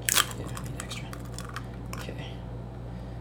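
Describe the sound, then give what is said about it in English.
A fourth egg cracks open with a sharp crack, followed by a few softer crunching and crackling clicks as the shell breaks apart, over a low steady hum. “Okay, here's the 4th egg.”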